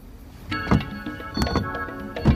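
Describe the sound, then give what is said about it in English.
A car's power window motor whirs steadily for about two seconds, a droning hum with sharp mechanical clunks as the glass starts and stops moving. “That's the window, man!”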